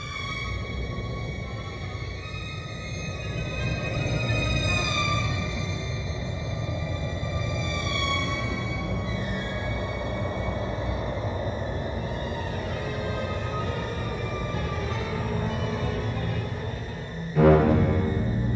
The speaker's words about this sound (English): so we've got the strings, which is sort of the first element of the Dementors' music, and you can hear that early on with the train sequence